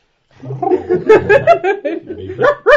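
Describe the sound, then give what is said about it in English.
A person imitates a small dog's yappy barking, a quick run of short, nasal vocal bursts mixed with chuckling. “When you bark, you sound like a small annoyed Westie.”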